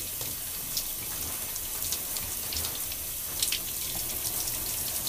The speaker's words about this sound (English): You see how long I'm taking a shower? I've been here for 6 minutes. That's how long I've been doing this thing for, 6 minutes.